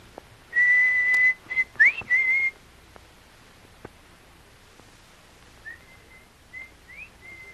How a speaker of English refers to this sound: Somebody hear … whistle. Whistle like ….